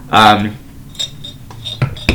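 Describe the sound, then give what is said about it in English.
Glasses clink together in a toast to 2022 at the end of the year: a bright ringing tone followed by a few lighter, scattered clinks of glassware over the next couple of seconds, fairly loud. “it all at the end of the day, or at the end of this year, a reason to say cheers to us 2022.”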